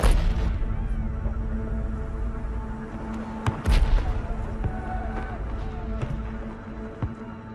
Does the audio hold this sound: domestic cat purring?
no